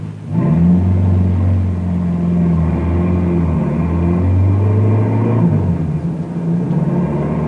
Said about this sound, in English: Harry watches the speedometer to be sure he's going the same speed that Norman did. Meanwhile, Bill hears the car approaching, and he walks out in front of the barricade, stoops down over the lantern just as Neil did when Norman was driving.